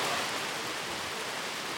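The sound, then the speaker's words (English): Steady, dense rain hisses continuously across the whole stretch during outdoor filming, a broad even wash of noise with no pauses or distinct drops, fairly loud, with no voices. “We do know one thing, filming in the rain is loud.”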